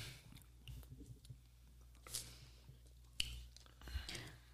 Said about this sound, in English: Let me take another sip.